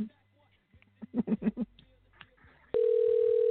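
A telephone rings out on an outgoing call: a loud, steady electronic ringback tone starts abruptly and holds to the end, after a quiet stretch with a few short, soft pulses.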